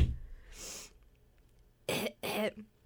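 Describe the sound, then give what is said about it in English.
A soft breathy cough early on, then a pause followed by two sharp, loud coughs in quick succession, with no talking. “I didn't bring cough drops.”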